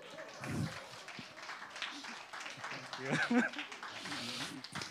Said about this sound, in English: All right, please give them a round of applause.